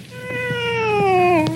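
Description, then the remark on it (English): A single long cat meow, clear, holding steady before sliding downward in pitch at the end, with no talking and only faint background clicks. “Hey, kitty. You hungry?”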